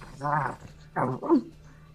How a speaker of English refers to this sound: The jackal immediately begins to retreat out of the moonbeam, going back up the stairs, and you hear like growling and barking.